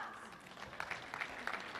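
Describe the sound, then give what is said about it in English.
An audience of football fans claps steadily on Super Bowl Sunday in a dense, continuous patter of many hands, with a few sharper claps standing out and a murmur of voices underneath. “They clapped for us.”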